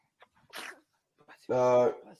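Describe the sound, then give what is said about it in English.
Someone sneezes: a short breathy intake and hissy burst, then a loud, throaty, voiced sneeze that cuts off quickly. “Bless you.”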